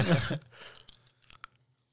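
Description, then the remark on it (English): Wet chewing of chocolate pudding, starting with a louder mouthy burst and then a few sticky smacks and small clicks tapering off, with no talking. “That chewing sound. Chocolate pudding.”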